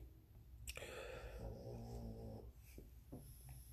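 A sleeping dog named Rocky snores, one long raspy drawn-out breath followed by a couple of shorter snuffling snorts, fairly quiet with no one talking.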